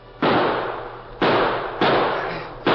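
Four loud gunshots crack out at uneven intervals as outlaws shoot at Dan and his horse struggling in the creek water, each a sharp bang trailing into a long rumbling decay that overlaps the next shot. No voices are heard.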